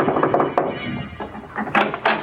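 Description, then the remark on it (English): Several dull, hollow knocks on the wooden door of a big house at night, landing unevenly over about two seconds with short pauses between them, moderately loud and with no voices. “I decided to take a chance. I knocked at the door.”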